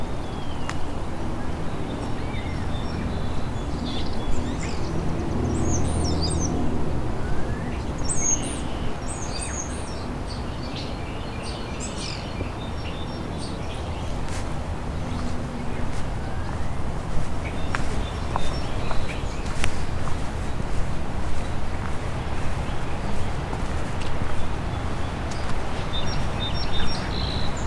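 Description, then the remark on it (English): A songbird sings a varied string of chirps, whistles and call-like phrases, mimicking the calls of house sparrow, nuthatch, tern and osprey, high-pitched bursts over a steady rumbling background noise, with no one speaking. “So far I've heard house sparrow, nuthatch, tern, osprey, all being mimicked.”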